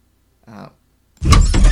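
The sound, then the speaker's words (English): A door gives a brief, pitched squeak that wavers for about a quarter second, then after a pause comes a loud, heavy clunk and rattle as it shuts. “That's a nice door sound. That is a great door sound. Give me some nostalgic squeaky feelings door right sound.”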